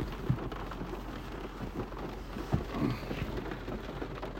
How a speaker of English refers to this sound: So yeah, it's raining today. It's one of those days where it's gonna rain. It should be pouring like around, I don't know what time it's gonna pour.